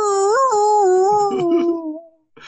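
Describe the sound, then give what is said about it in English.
A single loud, drawn-out whale scream, a wavering tonal wail that rises briefly and then slowly sinks for about two seconds before cutting off, with no voices. “And then we hear whale screams.”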